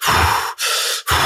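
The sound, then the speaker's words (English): A person imitates hard, heavy breathing like Hulk Hogan getting jumped and about to pass out: three loud, rapid gasping breaths in quick succession, with only brief pauses between them and no talking. “He almost looks like, you know, when Hulk Hogan was getting jumped again, about to pass out, and all of a sudden he starts breathing hard.”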